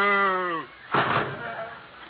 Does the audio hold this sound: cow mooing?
yes